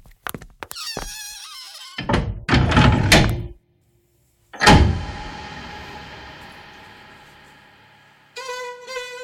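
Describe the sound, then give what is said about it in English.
A door is handled with a few sharp latch clicks and a creaky scraping swing as someone leaves by it, then shuts with a heavy thud that rings out slowly. A brief tonal chime follows. No one speaks. “No, not by the window. I'm leaving by the door.”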